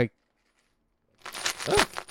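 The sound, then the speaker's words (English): After a short silence, pennies rattle and clink inside a piggy bank, a busy metallic jangle lasting about a second, moderately loud. “Yeah, I got lots of pennies in this.”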